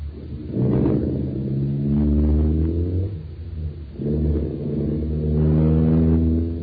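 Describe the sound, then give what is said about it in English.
A car engine turns over and revs up loudly, its pitch climbing, dipping, then surging again in a second rev, with a steady low rumble underneath and no talking. “get it started.”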